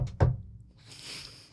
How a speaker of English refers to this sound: So, we'll then have you knocking on the door. Yeah, it's like a very just short, polite knock.